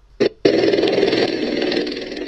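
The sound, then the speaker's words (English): Several twin-rotor US Marine Corps Osprey aircraft roar over a residential neighborhood in California, dropping troops: a brief burst followed by a loud, steady, rumbling mechanical drone with a throbbing, choppy texture that holds without pause. “Yeah, they're showing a residential neighborhood in this Osprey helicopter.”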